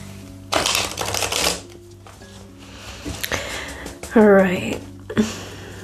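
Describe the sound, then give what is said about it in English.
A deck of tarot cards is riffled in a dense, crackling burst lasting about a second, followed by softer card handling, taps and a brief murmured voice. “All right, we're going to get one more shuffle in here.”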